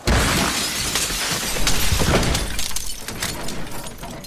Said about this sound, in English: The power goes out, and a tree branch comes crashing violently through the window of his studio.